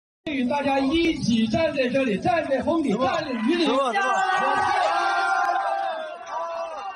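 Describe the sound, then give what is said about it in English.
A large crowd of students standing outside in a downpour at a school ceremony shouts and calls for a school official to come out from under a canopy: many overlapping voices rising and falling in a loud, continuous clamor that fills the whole stretch before easing slightly near the end. “When he mentioned facing the storm alongside the students, the crowd began calling for him to come out from under the canopy's cover.”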